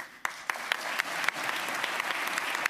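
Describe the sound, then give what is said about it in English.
A crowd applauds steadily, a dense wash of many hands clapping with a few sharper individual claps standing out, sustained throughout without any talking. “Also, I think some applause for...”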